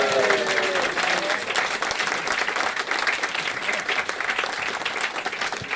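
A steady burst of audience applause welcoming guest Stuart Ashen (Ashens), dense overlapping claps filling the whole stretch at a loud, even level, with a brief tonal whistle or cheer near the start.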